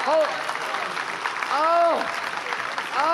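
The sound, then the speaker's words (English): Sustained applause from a large gathering fills the room, dense and steady, with a few voices whooping and calling out above the clapping, just after a Christian dedication prayer ending in amen. “Now you can clap like you never clapped before.”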